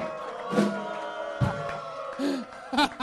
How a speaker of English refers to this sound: Listen to the crowd.